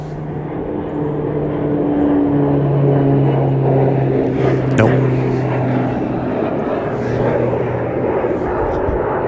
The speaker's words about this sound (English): Nope. Loud, but just a dual prop plane of some type, a little commuter jet or commuter plane coming through.